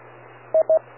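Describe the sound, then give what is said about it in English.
Two short, bright DTMF beep tones from an amateur radio with the WIRES feature turned on, sounding in quick succession as the operator keys up, over a low, steady radio hiss and hum, each lasting about a tenth of a second. No one speaks. “Okay, and you have your wires turned on because I heard the beep, so it held you up.”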